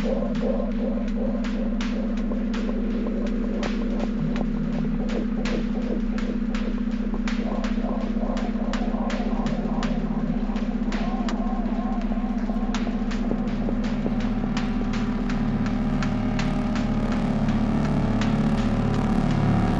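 A dark drone music track: a steady, heavy low hum throbs beneath a haze of mid-range tones, scattered with sharp crackling clicks, with the low pattern shifting into a pulsing rhythm toward the end.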